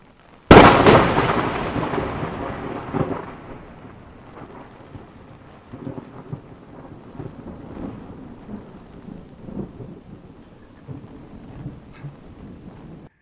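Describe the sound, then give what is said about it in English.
A sudden, very loud crack of nearby thunder from a lightning strike in a lightning storm splits the air, then rumbles and fades over steady rain that keeps falling throughout, with no voices. “He's like, wait a minute, I'm not just going to stand in this lightning storm.”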